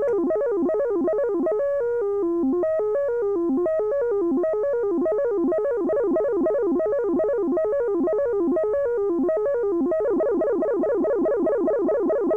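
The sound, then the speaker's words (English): A synthesizer step sequence, its rate controlled externally with a keyboard, cycles through bright, pitched electronic notes in repeating patterns, with the tempo shifting over time and speeding into a rapid, dense run toward the end. No talking. “the rate of the sequence may be controlled externally, as with the keyboard again.”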